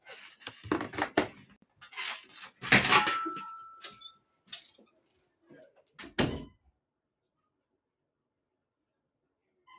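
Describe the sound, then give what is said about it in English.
As the speaker's wife arrives home, a door opens with a short squeak amid a flurry of clattering handling noises and a light metallic jingle of keys, then shuts with a solid thud before things go quiet. “Wife just got home.”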